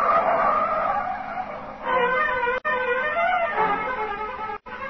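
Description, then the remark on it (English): A car speeds past with tires squealing and skidding, a loud, sustained screech with rising and falling pitch, broken by two abrupt cutoffs. “You keep saying things you shouldn't, and she lashes out with an answer, and before you know it, you've stormed out of the house, and you're taking it out on the car.”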